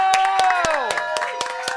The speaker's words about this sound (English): So once again, thank you to... Let's have a control round of applause for the amazing …!